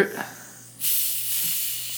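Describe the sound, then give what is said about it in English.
A can or bottle of Big K soda cracks open with a sudden burst of bright, fizzing hiss that sustains steadily, fairly loud, after a brief moment of faint murmuring. “I was worried that this wasn't carbonated at all.”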